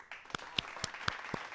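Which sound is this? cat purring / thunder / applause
applause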